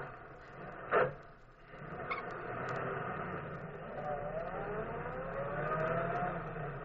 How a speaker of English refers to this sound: Easy, darling. Now I'll start the car.